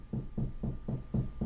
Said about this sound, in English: We have some knocking. Yeah. That was not knocking on the door, just to keep everybody updated. That was weird.